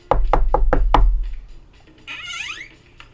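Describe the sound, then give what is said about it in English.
Five sharp knocks on an apartment door in a quick, slightly uneven rhythm, loud, followed by a faint creaking squeak as the door seems to open and a visitor enters. “There's a knock on the door, and her mother enters.”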